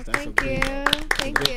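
A short, sparse round of applause for a guest who came to the show: about eight sharp, irregular claps ring out over a sustained, pitched tonal background, without a full crowd ovation.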